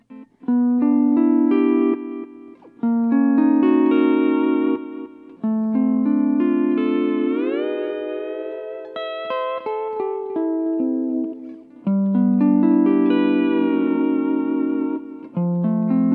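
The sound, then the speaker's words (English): An electric guitar with a delay effect and thick reverb, played through an amp with a mic set in front of it in a studio, plays sustained, ringing notes and a sliding bend, with a lingering echo-like tail that smears the notes together. The playing is loud and steady, with no talking. “So there's a little delay you can hear.”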